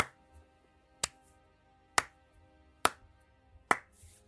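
A slow clap: four sharp, crisp hand claps spaced evenly almost a second apart, each ringing out briefly over a low, steady background hum, with no voices.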